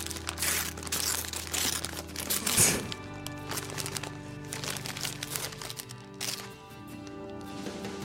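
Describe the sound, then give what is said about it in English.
Wrapping paper crinkles and rustles as a wrapped present, a pair of new scissors, is unwrapped, with occasional sharper tearing sounds. The crackling runs continuously for several seconds with no talking. “He's given her this present. It's all wrapped up and everything, so she's playing along.”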